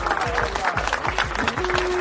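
A dense, steady round of applause fills the whole couple of seconds, many hands clapping at once, with faint thumping and a few tonal sounds mixed underneath.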